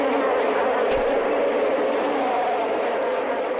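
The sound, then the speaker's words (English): A dense, steady drone of swarming bees from the end-credits soundtrack of the 1976 film The Savage Bees, buzzing continuously without pause, loud and unchanging, with one brief click about a second in and no voices. “Let's turn these annoying bee swarm sounds off.”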